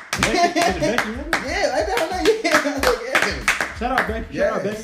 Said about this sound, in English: Yesterday on LeBron's birthday, the Spurs had the first lady host her first NBA game yesterday. Oh, shit. And we got to clap it up for her.